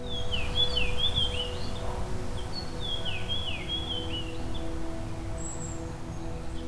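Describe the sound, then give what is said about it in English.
A fox sparrow sings two short, sweet whistly phrases, each lasting about two seconds, over a steady low rumble of outdoor background noise, with a faint high note near the end, in a large urban woodlot in the city of Hamilton, southern Ontario, during spring migration. “This species has a whistly song, usually 2 to 3 seconds long, which can vary depending on the song type and the subspecies.”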